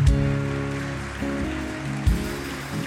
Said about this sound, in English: Clap it up as these come. And you can face the congregation. Come on, keep clapping. This is amazing.